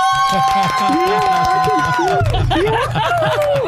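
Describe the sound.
Enthusiastic, high-pitched screaming holds loud sustained notes that slide and waver, layered over a busy, pulsing babble of excited voices for nearly four seconds.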